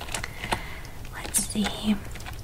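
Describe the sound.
Soft, irregular clicks of typing on a computer keyboard during a check-in at the Mahogany Lodge Hotel, a handful of quiet taps spread unevenly over a couple of seconds, with faint whispery voice sounds in the background.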